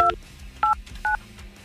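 Three touch-tone telephone dialing beeps on a hotline phone, each a short dual-pitched tone, spaced unevenly over a low background hum with no talking.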